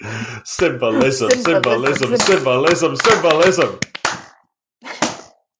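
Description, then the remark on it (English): A voice talks over a steady stretch, then a couple of sharp, quick hand claps snap out to sync the recordings, used instead of the usual bell, followed by a brief pause and a short burst of sound. “We can clap. Ready? Back to the usual. Yep. We're going to be horribly out of sync.”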